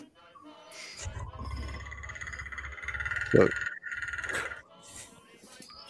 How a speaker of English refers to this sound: This cricket soundtrack is making me sleepy. Is it? Sorry. It's okay. Dang. I know that they're probably eldritch horror crickets.